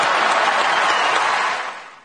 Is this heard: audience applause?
yes